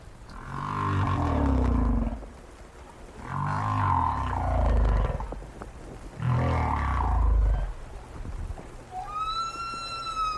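Humpback whale song recorded by Roger Payne: three long, groaning, moaning calls that swell and fall in pitch, followed by a rising, whistle-like upsweep with bright harmonics at the end, loud and without speech.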